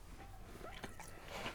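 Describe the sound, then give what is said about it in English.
Quiet mouth sounds of someone chewing food, with soft wet clicks and smacks scattered irregularly over a low background hiss. “Chew first.”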